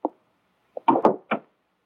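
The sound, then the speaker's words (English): A wooden office door swings shut: a soft bump, then a cluster of clattering knocks as it meets the frame and latches, with no voices. “Come in, close that door.”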